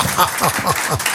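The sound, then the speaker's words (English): An audience breaks into steady, dense applause for a volunteer called up from the audience at a stage show, many hands clapping at once in a continuous wash of sound, with a few voices faintly mixed into the clapping. “Let's have a round of applause for our brave volunteer, shall we?”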